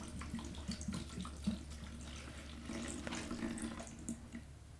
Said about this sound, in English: Fill potion bottle with water, pour into cauldron, listen for the tap, tap, tap sound, and then tap the cauldron three times. Okay. I'm pouring in the water.